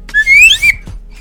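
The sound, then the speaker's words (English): A slide whistle gives a short, bright tone that glides upward, then drops briefly and settles, loud, lasting about half a second with no talking. “Got my slide whistle.”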